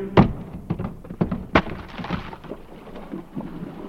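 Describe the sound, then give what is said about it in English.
A heavy barrel of beer tumbles down a flight of stairs: several loud, irregular thuds and bangs in quick succession, then a fading rumble and clatter. No voices. “And once I fell downstairs with a barrel of beer.”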